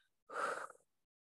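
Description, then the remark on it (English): A single deep breathy exhale through the mouth during a yoga class breathing exercise: a soft rush of air that swells quickly and fades within about half a second, with no talking. “And let's exhale out of our mouth.”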